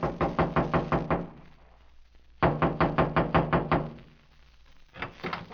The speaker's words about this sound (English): Another trailer stood across the clearing from Freddy's body about 100 yards away. I walked through the clearing and knocked on the door.